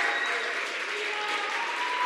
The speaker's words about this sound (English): would you just stand to your feet for a second and give them the biggest clap and love you can do?